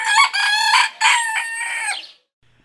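A rooster crows loudly in a drawn-out, harmonic call broken into several bursts, ending abruptly after about two seconds with no voices.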